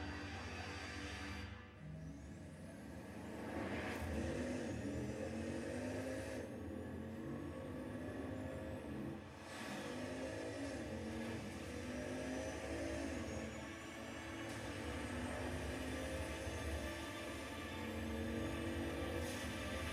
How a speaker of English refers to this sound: This is a real car that you can buy for $3 million